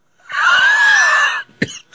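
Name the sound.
cough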